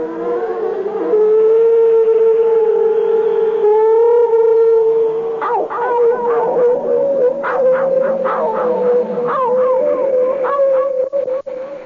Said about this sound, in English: when they sit out there at night and the moon is glancing off their wings and they're quiet and I can hear the dogs baying, I just don't know what to think.